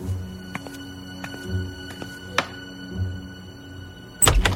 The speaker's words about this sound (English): Who could be knocking at her bedroom door when there was no one in the house?